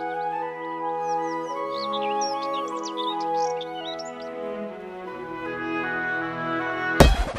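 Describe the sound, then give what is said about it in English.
Quick, high birdsong chirps and trills flutter over a steady, sustained musical drone for several seconds, then fade out before an abrupt, loud thump cuts in at the end. “This is the unofficial Bird Radio.”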